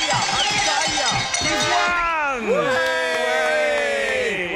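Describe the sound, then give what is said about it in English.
A loud, sustained crowd cheer, full of overlapping whoops and rising and falling shouts, with bright ringing tones mixed through the roar for the whole stretch. “Here we go, the crowd are cheering.”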